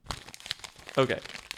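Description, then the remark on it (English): A crumpled sheet of paper with a nominee's name written on it is unfolded and smoothed out, giving a steady run of dry crinkles and crackles, with a brief voice sound cutting in midway. “We have all of the nominees just written on crumpled up sheets of paper that we decrinkle.”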